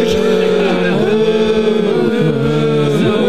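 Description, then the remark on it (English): A cow moo sound effect, a loud, drawn-out lowing that wavers and bends in pitch for about three seconds, with nobody talking over it. “so, with the first use of our moo sound.”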